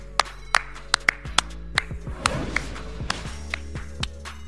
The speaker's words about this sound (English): Clap it up. Clap it up.